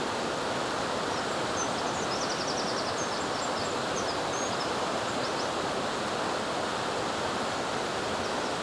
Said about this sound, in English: It's down behind the church. You have to do a little hop down, further down into the valley. It's bordered by a lot of yew trees that hide the river, but you just take a few steps and here it is. Just listen to that gorgeous sound.